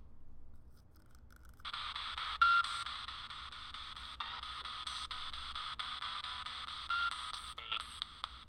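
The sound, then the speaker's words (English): Steady electronic static hiss from computer interference switches on about two seconds in and runs continuously at moderate loudness, with faint crackles and a low hum underneath. No one speaks. “Still hearing some of the computer interference.”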